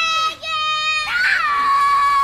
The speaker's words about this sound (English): Kids screaming down the cereal aisle. That voice that's 12 octaves too high.